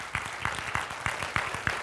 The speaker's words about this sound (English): Look around real quick. The ones clapping are serving.